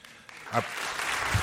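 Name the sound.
audience clapping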